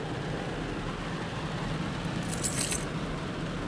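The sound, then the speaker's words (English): Heavy rain pours down in a steady, dense hiss that fills the whole clip, with a brief bright metallic jingle rising above it near the end. “Ah, my friends, the rain is falling even harder, as you can probably hear in the background.”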